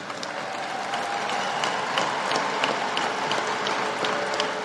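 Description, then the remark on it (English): A crowd applauds steadily, dense clapping filling the whole stretch at an even, moderately loud level with scattered sharper claps standing out. “White guy's not clapping.”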